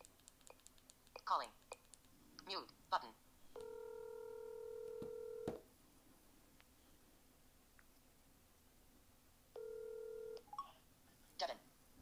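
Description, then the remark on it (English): A phone call placed through an Alexa voice assistant connecting: a few short clicks and beeps, then two steady electronic ringing tones, a longer one followed by a shorter one after a pause, clear. “Calling”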